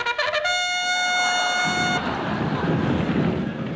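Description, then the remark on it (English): The steam horn of a 100-ton, anthracite-fired, reciprocating-engine steamroller gives a few quick stuttering toots, then one sustained, steady, bright blast lasting over a second, followed by a broad rushing, rumbling noise. “I demand that you arrest the driver of that 100-ton anthracite-filled reciprocating engine steamroller.”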